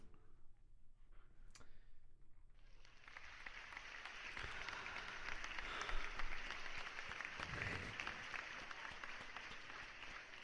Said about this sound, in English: That's very reserved British applause. That's perfect, isn't it? It's the friendliest, nicest round of applause I've ever heard.